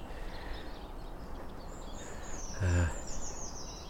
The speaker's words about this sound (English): A general background chatter of siskins.